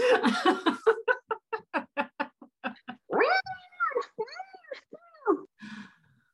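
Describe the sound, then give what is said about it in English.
A voice imitates an angry, yowling cat: a rapid burst of short choppy cries followed by several drawn-out, wavering howls, loud, with no other talk. “If you want to go up in my face about my boundaries and I've said to you, been very point blank things, you're going to get the cat being baptized.”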